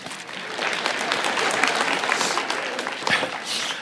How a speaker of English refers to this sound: There's a little joke going on starting yesterday. Every time every time you clap, I take a drink. Every time I take a drink, you clap. Okay, so that's what was behind that.